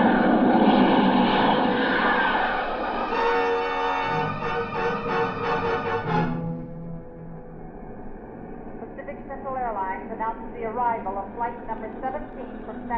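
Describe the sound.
An airplane engine roars steadily as the plane taxis up to the ramp, joined by a rising whine for several seconds, then the engine noise settles lower while a person speaks over it.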